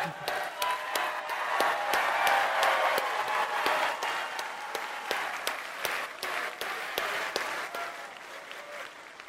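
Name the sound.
audience applause and clapping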